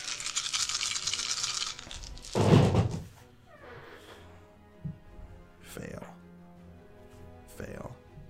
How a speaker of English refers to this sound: Ooh. That's a metal dice.